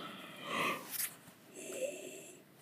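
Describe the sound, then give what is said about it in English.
A drawn-out yawn with breathy, wheezy exhales rising and falling, fairly quiet, with no talking over it. “Oh my God, I'm yawning.”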